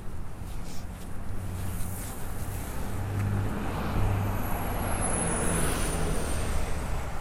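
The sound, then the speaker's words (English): Loud car engines roar past in a steady rush of traffic, the noise swelling toward the middle as hot rod cars speed through a yellow traffic light. No one speaks. “Just hot rod cars trying to make it through a yellow light.”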